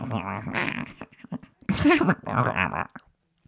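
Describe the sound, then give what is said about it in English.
A voice imitates soft animal-like coos and whimpers in several short bursts, moderately loud, with breathy, wavering tones and brief pauses between them, imitating the mostly silent character from The Mandalorian. “I think that we're all pretty enamored with your coos and whimpers.”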